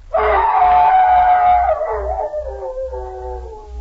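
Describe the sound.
A man's voice imitates a hound's howl on the Jell-O radio program, for a sketch of The Hound of the Baskervilles: one long, loud, wavering cry that starts strong and slowly trails off, heard alone with no other talk.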